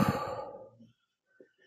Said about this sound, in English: Again, in through your nose and out through your mouth. For an added benefit, you can put the tip of your tongue up to the roof of your mouth and breathe in and out. One more time. In and out.